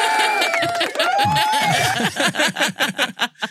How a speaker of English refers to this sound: The applause. It's coming.